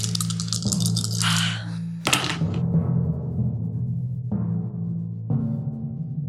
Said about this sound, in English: Let me just break out a couple more dice for sneak attack.